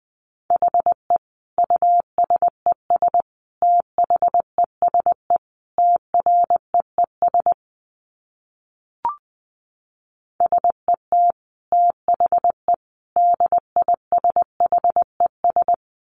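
Morse code at around 20 words per minute: a steady mid-pitched tone keyed in quick dots and dashes, two runs separated by a short pause broken only by a single click.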